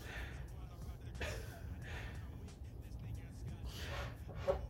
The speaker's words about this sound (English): If you guys turn up your volume, you're going to hear this guy breathing heavy. That was like a workout and a half.